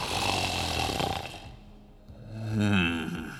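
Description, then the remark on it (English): Deep, heavy snoring of the drunk Cyclops Polyphemus asleep: a long rasping exhale, a brief quieter lull, then a louder growling snort with a droning, throaty pitch. No one speaks. “And when the pain had finally burned out, Polyphemus slept, for despite his injury, he was still quite drunk.”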